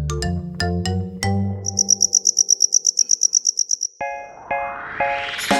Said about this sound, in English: The English word cricket comes from an old French word, criquet. That's what people thought it sounded like when a cricket was singing. Criquet, criquet, criquet. That's how crickets got their name.